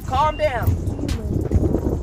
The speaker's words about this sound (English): It's a little windy out here, guys, so I hope my camera doesn't fall. I sacrifice for you guys. I'm out of the studio, but it's like windy and crazy, but we going to do this.